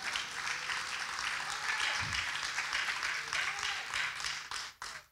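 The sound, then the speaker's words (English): An audience claps together as a clap offering unto Jesus, a dense, steady wash of applause lasting several seconds, with faint voices mixed in before it tapers off abruptly at the end. “Give a clap offering unto Jesus.”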